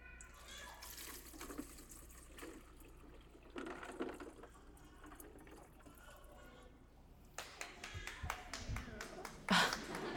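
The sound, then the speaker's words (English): Water pours in uneven splashing bursts into a container holding rocks and popsicle sticks, with a louder gush near the end and faint talking in the background. “And so I think if this is water, the bad things are the rocks, the good things are the popsicle sticks.”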